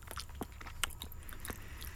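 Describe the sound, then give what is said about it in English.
Quiet chewing of a chewy liquorice Pontefract cake sweet, with soft wet mouth clicks and squelches repeating irregularly for a couple of seconds and no talking. “You can't swallow that. You've got to chew it.”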